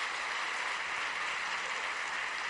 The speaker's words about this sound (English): Go back to your seats now. Clap for them as they go back.